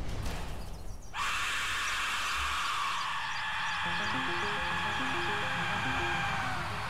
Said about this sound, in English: In 2013, a video of a man holding a skull-shaped instrument he calls a death whistle began making the rounds on YouTube.